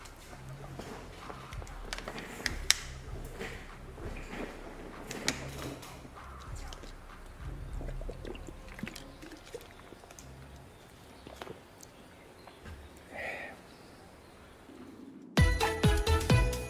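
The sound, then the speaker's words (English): Someone moves about fetching a glass of water: footsteps and scattered knocks and clinks of handling, no talking, ending with a sudden louder tonal burst. “Let me grab some water.”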